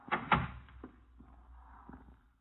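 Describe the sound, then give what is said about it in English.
A door in an art gallery opens with a loud thump of the latch, followed by a few faint clicks and a soft, drawn-out rattle as it swings, with no voices. “This door.”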